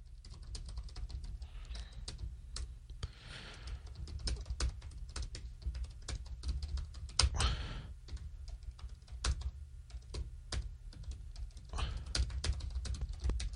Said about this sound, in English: Sorry, you probably heard me furiously tapping away at my keys. I'm just texting people.